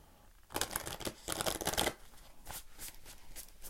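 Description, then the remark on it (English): A deck of cards is shuffled on the lap, a dense burst of rapid riffling and flapping, then several softer, spaced-out card slaps as the shuffle winds down. No one speaks. “All right, one last shuffle.”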